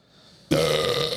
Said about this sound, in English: Yeah. I've been turning away and doing that. I know. It's hard, man. The beer made me burp.